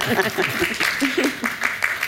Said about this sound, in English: Bravo. Today. Round of applause. Great stuff.